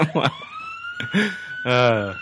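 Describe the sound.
A police siren holds a steady, high wailing tone that rises slowly, while bursts of voices and harmonic sounds overlap it throughout.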